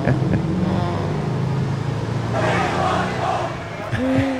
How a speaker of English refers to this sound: They got an old bus going to unload right there. Oh, that nice-ass bus, boy.